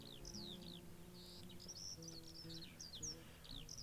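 Birds chirp and trill continuously, with several overlapping high calls repeating every fraction of a second over a steady low hum, as the opening of a song. No one speaks.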